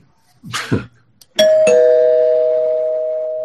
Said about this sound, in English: Okay, mild spoilers. I'll ring the bell.